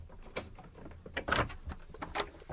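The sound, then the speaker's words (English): A key rattles and a lock clicks, then a door to the street creaks and swings open with a few scraping, clunking knocks as a man lets himself in with his key, fairly quiet, with no voices. “But he found that his key also opened the door to the street, and he let himself in and walked up the stairs to his room, still rather bemused by what had happened.”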